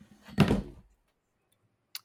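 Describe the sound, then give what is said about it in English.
An almost empty whiskey glass that was holding up a phone topples over with the phone, making a single dull, heavy thunk and a short rattle, followed after a pause by one brief, sharp click. No one speaks. “Yeah, I had a glass of whiskey holding up my phone because we're on video, and my glass of whiskey is almost empty and it just kind of fell over with the phone, so you guys no longer can see me on video.”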